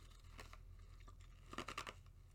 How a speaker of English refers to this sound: Crunching more ice.